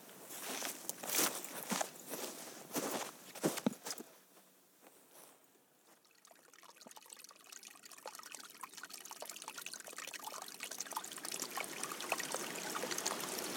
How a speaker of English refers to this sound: Well, we've come next to what I would describe as an adit or a portal adjacent to the Bonson Mill. There's a stream coming out of it. This is right at the bottom of the mine process.